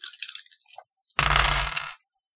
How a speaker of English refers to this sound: So go ahead and roll for me a sense plus hearing, which is 5 dice.